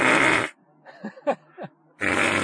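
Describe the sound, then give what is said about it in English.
Three short, sputtering fart noises blown with the lips, a voice imitating the sound in the woods of Clifton Commons, set between two loud bursts of harsh noise at the start and end. No talking. “I don't know, I'm making fart noises all right.”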